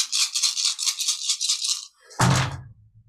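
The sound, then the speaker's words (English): Dice rattle rapidly in a rhythmic shaking for about two seconds, then a brief pause before they clatter loudly onto a surface and settle with a short tumbling rumble. No one speaks. “And I just want to make sure I have all my dice.”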